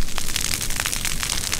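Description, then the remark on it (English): Dry branches of basket-making plant material catch fire in a deliberate burn, with dense, irregular crackles and sharp pops over a steady, loud hiss of burning. No voices are heard. “The dry branches light up quickly, but the roots will remain intact.”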